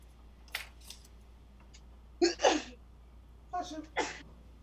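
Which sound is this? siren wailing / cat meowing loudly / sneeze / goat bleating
sneeze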